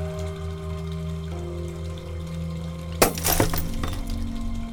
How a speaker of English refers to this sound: And then the light bulb over your head shatters, and this ghost is gone.